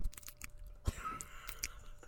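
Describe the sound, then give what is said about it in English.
Quiet slurping through a straw from an iced drink, a few short wet sucking bursts with small clicks and breaths between them, no talking. “Don't slurp it.”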